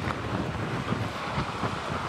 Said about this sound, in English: At what point it'll level off, we don't know, but the wind is still holding this water here.